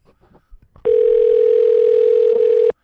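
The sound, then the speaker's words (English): A phone ringback tone on an outgoing call to a library: one steady, loud electronic hum lasting about two seconds, then cutting off, preceded by faint scattered clicks and rustles. “So we just gotta let it ring until someone picks up to use the phone and go, oh.”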